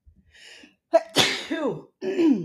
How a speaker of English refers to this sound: Excuse me. This is it. And I think I have one more sneeze.